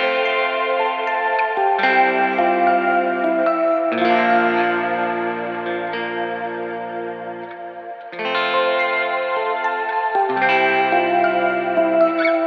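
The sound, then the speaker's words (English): Layered keyboard chords change every couple of seconds, with a different reverb cross-panned in behind the keys part, a swelling, washed-out soaring layer sustaining behind them. The full, steady mix plays alone, with no talking. “I was cross panning a different reverb in behind the keys part to kind of make these soaring, you know, parts that were kind of working in a way together.”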